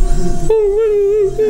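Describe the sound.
A person imitates a dog, starting with a short whimpering sound and then a loud, wavering howl that holds steady for about a second.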